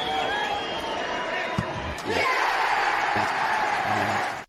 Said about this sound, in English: The thud of the ball, roar of the crowd.